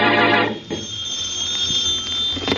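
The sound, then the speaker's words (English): A telephone rings in the Bromley home with a bright, rattling bell tone: one long burst at the start, a quieter pause with a steady high whine underneath, then the ring begins again at the end. “in the Bromley home, the phone rings.”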